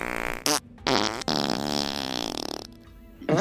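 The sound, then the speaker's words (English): A string of loud, buzzy farting noises from a fart machine, several raspy blasts of varying length and pitch, with short gaps between them and no talking. “And to do this, I'm going to use a fart machine to lead them away with the sounds of their people.”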